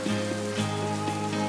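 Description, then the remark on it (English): Cars pass on a rainy street: a steady wet hiss with a low, constant rumble underneath and a few soft splashy ticks, heard alone without talk. “Cars on a rainy street, the thought you're thinking, a daydream on a detour, these too shall pass.”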